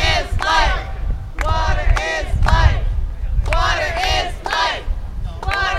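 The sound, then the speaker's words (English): A large protest crowd in front of Province House, opposing a salt brining process for underground natural gas storage, shouts and chants in loud, rhythmic bursts of massed voices, a few seconds apart, over a constant low rumble of outdoor noise. “The crowd heard from a number of speakers”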